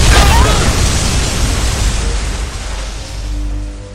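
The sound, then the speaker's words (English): A loud explosion erupts right away, a deep booming blast that rolls into a long, broad rumbling roar, easing only slightly over the next few seconds with a low hum underneath. It is from a trailer for Big Finish's audio drama The Blazing Hour. “The explosion is coming now, and nothing can stop it!”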